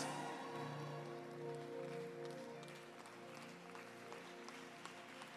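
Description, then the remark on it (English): An audience claps continuously as a clap offering, a dense, steady patter of many hands at a fairly even loudness, with sustained low musical tones running underneath throughout. “Increase that clap offering for me, ladies and gentlemen.”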